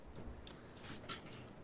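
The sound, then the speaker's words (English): Several quick clacks on a computer keyboard tap out in an uneven burst, fairly soft, with no voices, only a faint low background hum. “You have to record the loud typing every time you answer.”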